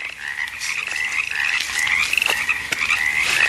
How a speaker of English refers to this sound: The crickets and frogs, they're listening. The ravine is listening to me.